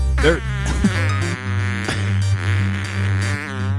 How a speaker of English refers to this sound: Oh, put the mic up to it. Let's hear the fart.